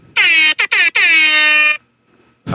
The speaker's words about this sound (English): Can you do the air horn one more time?